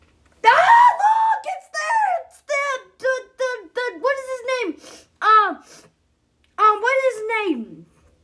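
A child yells loudly in a string of high-pitched, strained bursts with short gaps between them, then one last drawn-out shout.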